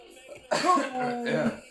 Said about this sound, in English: Gesundheit.